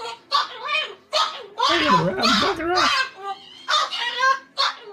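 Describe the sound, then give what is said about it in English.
A pet bird squawks loudly and harshly in a rapid series of raspy bursts, with a lower human voice briefly overlapping the calls midway. “Censor that bird. Don't censor my bird.”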